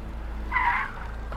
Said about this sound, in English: As the car sped away